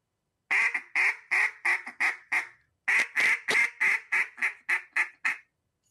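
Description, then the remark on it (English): A duck call blown in a mallard hen quack cadence that includes a bouncing hen, two descending series of loud, nasal quacks, the notes quickening and shortening toward the end of each run, clear with no talking. “Hey, so going back to that little quack cadence you did, was there a bouncing hen in there?”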